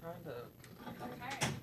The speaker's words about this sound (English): can you close the door for me, please? Thank you. Thank you, much appreciated.